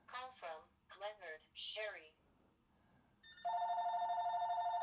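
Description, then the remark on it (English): A telephone starts ringing with a steady, loud electronic trill while someone is trying to record, its harmonic tone sustained after a few bursts of speech from a voice. “The phone never rings, and of course it rings as I'm trying to record.”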